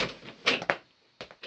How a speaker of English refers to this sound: And in that moment, the door opens.